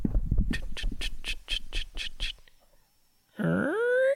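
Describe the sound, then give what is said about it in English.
A voice imitates a creaking door swinging open: a loud, rising, squeaky tone lasting under a second, after a run of eight rhythmic vocal clicks and a short pause. “That's you opening the door.”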